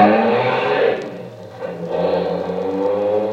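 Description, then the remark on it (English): A Bentley's engine roars as it chases another car, easing off briefly partway through before surging and accelerating again with a steady, loud droning hum. “Follow that car, quick, hurry.”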